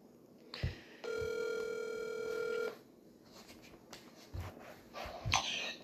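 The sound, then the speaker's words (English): A single steady electronic telephone ring tone sounds for about a second and a half, clear, framed by a few soft clicks and rustles before and after, as a call goes out to a wrestling expert. “we're getting a wrestling expert on the phone here.”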